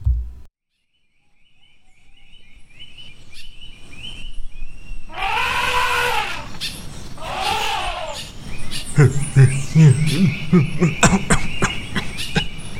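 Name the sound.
throat clearing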